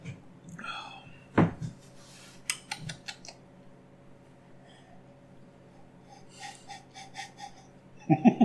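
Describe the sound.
Someone gulps down a drink: a handful of soft, wet swallowing clicks and a sharp breath, faint over a low hum, with a brief muffled voice toward the end.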